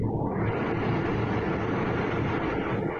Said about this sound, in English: It's like, we'll wait for this train to go away. Yeah. Sorry, guys.